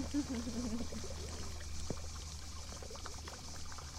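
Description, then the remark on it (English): Water splashes and pours steadily from a huge marble sculpture fountain, the centerpiece of a house's grounds, a continuous rushing wash of sound, with a faint voice briefly audible at the very start. “And the grand centerpiece of it all was a huge marble sculpture water fountain.”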